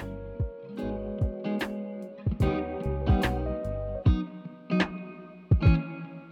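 Echo bouncing between three microphones as a mic is passed around: ringing, distorted tones smear together while loud handling thumps hit at uneven intervals, fairly loud, with no clear speech.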